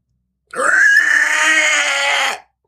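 A woman lets out one loud, anguished scream, raw and strained, held for about two seconds before cutting off sharply. No one speaks.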